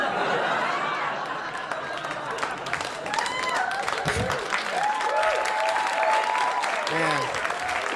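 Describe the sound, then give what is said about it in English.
An audience claps steadily and loudly for several seconds, a dense patter of many hands, with scattered whoops, shouts and laughter rising through it. “Yeah, clap now.”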